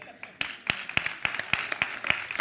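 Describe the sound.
An audience claps in a steady, even rhythm for a man who has just danced on a jacket, with about nine sharp, bright claps in quick succession over a low murmur of voices.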